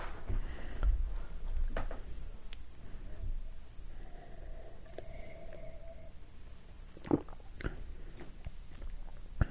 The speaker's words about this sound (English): Okay, took a sip. Doesn't taste like poo. That's good. There's a little bit of a tang to it.